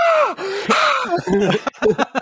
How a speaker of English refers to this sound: if I like didn't have neighbors, I would 100% just scream right there. I'm not making a joke about. I'm gonna edit in me screaming on my phone's audio, like right here.